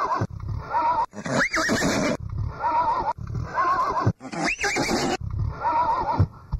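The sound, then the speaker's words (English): Adelaide police horses neigh and whinny loudly in a steady cycle, each call rising and quavering, with a rough snorting undertone between them and no speech. “Oh my God, look at the police horses.”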